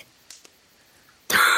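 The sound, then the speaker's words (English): After a near-silent stretch with a couple of faint breaths, a man bursts into a loud, sputtering performed cough, coughing up a bit of the drink he was drinking, and it cuts off abruptly. “He coughs up a bit of drink that he was drinking”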